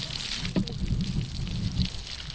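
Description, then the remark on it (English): Water dripping from a drip irrigation hose with holes watering garden plants, a steady soft trickle with a couple of more distinct drips standing out, fairly quiet, with no voices. “Most of the gardens are watered using drip irrigation. A hose with holes delivers just the right amount of water to each plant to minimize evaporation loss.”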